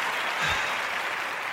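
A steady wash of applause from a crowd, many hands clapping together into a dense, continuous roar that holds at an even loudness throughout, with no voices standing out.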